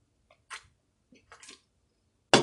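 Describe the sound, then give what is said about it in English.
Someone sips from a can: soft metallic ticks and short wet slurping bursts, then a sharper, louder clack at the end, with no talking. “If you wanted to up the, I gotta take a sip.”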